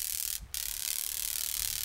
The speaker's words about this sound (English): Utah has neither snapping turtles nor snapping shrimp, but we do have snapping grasshoppers. Their loud, crackling sound punctuates summer hikes along open canyon slopes and rocky mountain ridges.